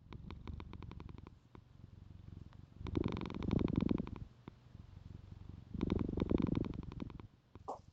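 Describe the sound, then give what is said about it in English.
A cat named Rick James purrs in a low, steady, pulsing rumble as it gets settled, broken by two louder bursts of rustling and brushing against the microphone as it shifts around. No one speaks. “Watch out, Rick James. Sorry, my cats.”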